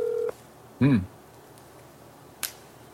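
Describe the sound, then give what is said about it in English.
A short, steady electronic tone from a phone keypad cuts off as a telephone call is placed, followed by a brief louder warbling beep and, later, a single sharp click against quiet background hiss. “Here's the clip right here. We're calling.”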